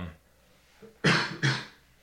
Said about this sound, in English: Sorry, oh, man, he couldn't hold in the cough forever.